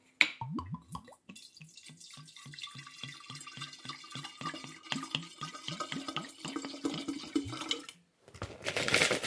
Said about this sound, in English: Okay, so I have just cut 500 grams of rhubarb. Now to pour the gin and fill everything in.